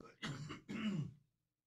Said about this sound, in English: It was chronic for about a month, and then I saw it was going around, so then I wasn't so concerned about this cough.